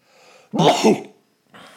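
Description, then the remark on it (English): A single sharp sneeze bursts out after a soft breathy lead-in, followed by a short pause and a faint airy hiss. No one speaks. “Bless you.”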